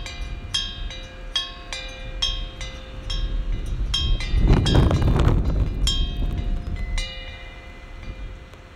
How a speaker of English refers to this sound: Okay, the car is gone. If that sounds good, that wind with the bells, that might be cool. You could loop that as you know what I mean, right?